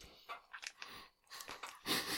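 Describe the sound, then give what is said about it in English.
Wet mouth noises of someone eating sticky peanut butter: irregular smacking and chewing bursts over a couple of seconds, ending in a louder gulping swallow, with no talking. “Every time you keep saying I did it, I thought you mean like you finished it, but you mean you just successfully swallowed it.”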